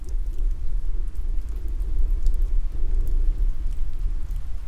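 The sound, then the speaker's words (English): Steady, dense rain falls with a deep, low rumble beneath it, a continuous wash of sound at an even level, with no voices present. “The great, dim, deep sound of rain, and of always and of nowhere.”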